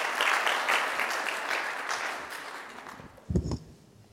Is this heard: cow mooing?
no